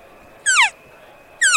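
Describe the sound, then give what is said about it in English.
Two short, nasal cow elk mews imitated on a call, each touching a high note then sliding quickly downward, spaced about a second apart, clear with no talking. “That's probably the best cow calling I've ever heard. Plenty good enough to call an elk right there.”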